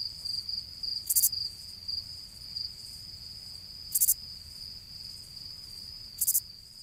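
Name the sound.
crickets chirping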